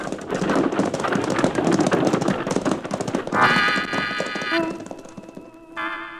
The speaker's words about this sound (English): and triggering his shotgun, sends the driver and his team off toward the nearest town in a cloud of dust.